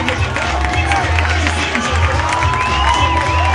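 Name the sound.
crowd cheering and clapping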